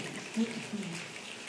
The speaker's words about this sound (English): So I'm going to have this section of the sanctuary rub your hands together. We're going to bring a little nature inside.